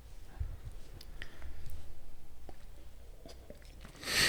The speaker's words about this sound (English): We're just stopping to. We're just taking a bit of appreciation. Synchronized sipping.